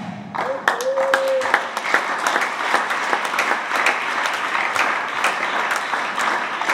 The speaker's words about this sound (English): The way you are clapping, I think I have to stop praying and preaching.